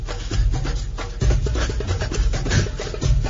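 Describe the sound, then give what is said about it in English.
Heavy panting, a loud, continuous run of rapid, rasping breaths in a steady rhythm, with a low rumbling drone underneath and no talking. “I can't do it over the panting.”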